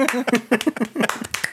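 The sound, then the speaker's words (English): A small group claps briefly in a quick, uneven patter of sharp slaps, welcoming a new co-host to the show, with a few voices calling out over the applause. “The equal amount of claps around.”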